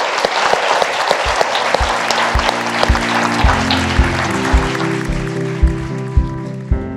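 Sustained applause from an audience, a dense wash of clapping throughout, while music with a steady beat fades in underneath partway through and grows alongside the clapping.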